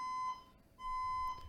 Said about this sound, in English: have our building set off a fire alarm